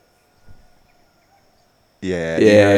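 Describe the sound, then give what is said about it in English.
At sunrise, about 6:24 in the morning, after a couple of quiet seconds with a faint low thud, a cockerel bursts into a loud, harsh, sustained crow that rises in strength and runs to the end. “You should hear all the chickens and the cockerels kick off, right?”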